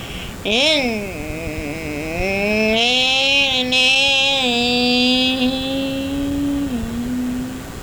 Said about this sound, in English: Damn, she should get those mufflers checked.